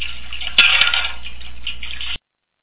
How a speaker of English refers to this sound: So I'm going to go ahead and put the dishes away.